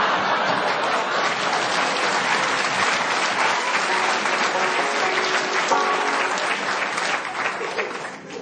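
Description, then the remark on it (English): A crowd claps and stamps their feet together in a dense, continuous roar of sound that stays loud and steady before easing off slightly at the very end. “We'll have none of that stamping and clapping in here.”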